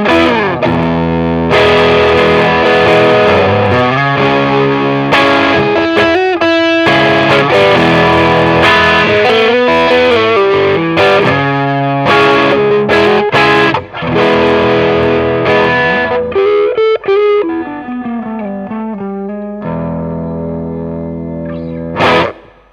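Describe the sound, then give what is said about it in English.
An electric guitar played through a TS9 Tube Screamer overdrive pedal plays a loud, continuous melodic passage with bent notes and sustained tones, its mildly distorted, warm tone ringing out alone with no talking. “Let's hear this one, man, the TS9.”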